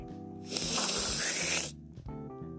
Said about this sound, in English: Just take out a valve of cocaine, make yourself a nice little line, and sniff.